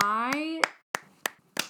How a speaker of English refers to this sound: We can clap for that. We can, because she's right.